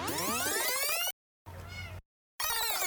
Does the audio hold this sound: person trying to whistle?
no